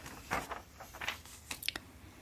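Soft, sparse clicking of computer keyboard keys, a handful of light taps at an uneven pace with a short quick cluster near the end, quiet and without any talking.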